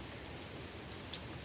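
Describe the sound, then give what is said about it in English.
Steady rain from a storm that is slowing down pours in a continuous, even hiss with no voices, broken by a single brief sharp patter of drops near the end. “You guys get to hear the storm slow down.”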